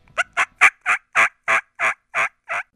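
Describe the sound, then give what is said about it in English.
A series of nine raspy hen turkey yelps, made on a diaphragm mouth call imitating a raspy old hen, played inside a truck, evenly spaced and steady in rhythm, fairly loud, with no talking. “What do you think of this? This is a raspy old hen.”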